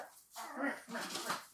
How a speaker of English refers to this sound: All right, I'm going to grab my dog so she doesn't whine. Hold on.